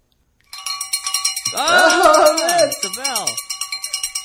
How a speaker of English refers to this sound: Oh, man. It's a bell. It's a pre-lap.